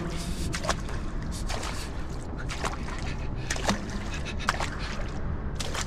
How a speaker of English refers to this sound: Keep following the water as it flows down. Always flowing down.